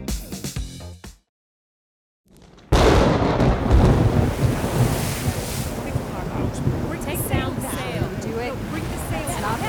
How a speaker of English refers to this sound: What from that bluff can you see out at sea? Nothing at all. It is very rough. Water. Ah, the wind is also roughing up the land.